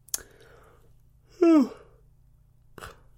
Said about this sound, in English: Excuse me, a yawn there.